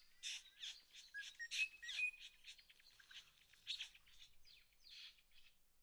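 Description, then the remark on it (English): A satin bowerbird calls in a rapid, chattering series of harsh, buzzy notes mixed with a few short whistles, clear, with no one talking. “the first one sounded like a clown honking a horn”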